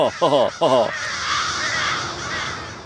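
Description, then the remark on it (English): Crows give two loud, harsh caws in quick succession, then fall quiet, leaving a steady outdoor hiss of wind or ambient noise. “And so the crows fly off to continue indulging in their uniquely crowish brand of fun.”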